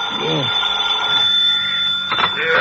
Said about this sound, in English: An hour later, you're back in your own apartment. Next morning, the phone awakens you.